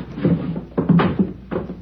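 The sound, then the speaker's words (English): The door of room 11 on a second floor being tried and opened: a short series of irregular clunks and rattles, fairly loud, with low thuds and scraping bursts spaced unevenly over about two seconds, and no one talking. “I'll try the door.”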